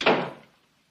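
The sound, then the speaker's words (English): A heavy tavern door swings shut with a single solid thud, followed by a short fading rumble as the sound dies away. It is heard on its own, with no talking. “We are closing the tavern door.”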